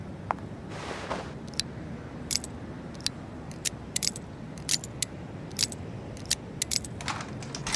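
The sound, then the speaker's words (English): Storm picking the locks and alarms of locked doors: a string of sharp, irregular metallic clicks and ticks, some in quick pairs, over a steady low rumble, with no voices. “Storm, these doors are locked. You'll have to gimmick the locks and alarms.”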